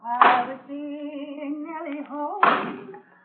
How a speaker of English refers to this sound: That's Joe chopping wood out by the barn.